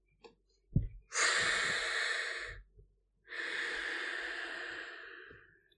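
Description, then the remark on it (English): Two long, airy breaths, a slow inhale then an exhale, soft with a gentle hiss, separated by a brief pause with faint small clicks. No talking. “As soon as you get in, you hear the light sound of almost pleasant, comfortable sound of breathing coming seemingly from the walls and from the floor.”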